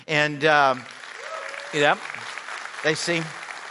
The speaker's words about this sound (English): Looks like everybody who doesn't know you is clapping, so that we'll take it, right?